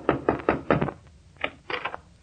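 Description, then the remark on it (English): A series of firm knocks on the door of the Middletown Little Theater League by Dennis Day, in the guise of a big Hollywood film magnate: four quick raps, a short pause, then three more, fairly loud with no voices. “Dennis Day, who, in the guise of a big Hollywood film magnate, is about to knock on the door of the Middletown Little Theater League in an effort to get some actors to do his forthcoming radio.”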